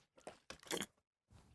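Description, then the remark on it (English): A big slurp of broth: a couple of loud, airy sucking bursts, then a brief pause and a softer follow-up sound, with no one talking. “Oh, that was a big sip of broth right there, brother.”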